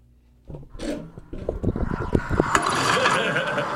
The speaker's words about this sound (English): It's only 13 seconds. Play it. It's a lawnmower that sounds like Seth Rogen.